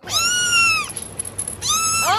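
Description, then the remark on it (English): A cat meows twice, loud, each call a drawn-out, wavering yowl separated by a short pause with faint background noise, during a game called Please Don't Eat My Cat. “The cat is sitting there minding its own business, and nothing is happening to the cat.”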